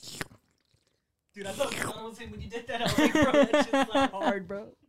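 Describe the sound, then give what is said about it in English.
Wet mouth noises: a voice imitating slurping and chewing for an ASMR promo, with a quick click, a short pause, then several seconds of steady smacking and slurping into the mic. “You did that slurp noise.”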